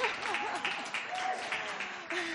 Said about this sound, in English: Woo! Yeah, let's clap.